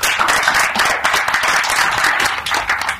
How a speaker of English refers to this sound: So please, a round of applause for AFSA.